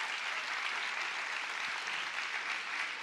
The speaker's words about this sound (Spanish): Denle un aplauso a Ángel, por favor.